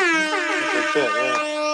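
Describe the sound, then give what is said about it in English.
A loud, blaring air horn sound effect blasts continuously for a couple of seconds, its brassy tone wavering slightly in pitch as it sounds alone. “The air horn, that's good.”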